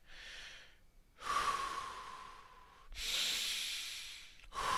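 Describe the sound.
A voice imitates the heavy, labored breathing of a drunk person: several loud, breathy inhales and exhales in a slow, uneven rhythm, with a faint whistling tone on some breaths.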